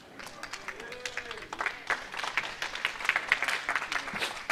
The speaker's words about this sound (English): That was like the Americans clapping for the Europeans and the Ryder Cup when the European cancer pattern wins the hole. They're not very happy.